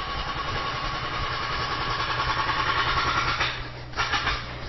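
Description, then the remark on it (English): A heavy machine engine drones steadily at a mid-low pitch at building works where a house is being knocked down, with a couple of short, harsh crunching bursts near the end. “Oh, just going past some building works.”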